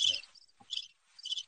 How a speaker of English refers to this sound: are those Mark crickets? Those are crickets.